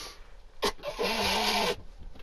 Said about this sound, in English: Wait, let me just blow my nose on pod.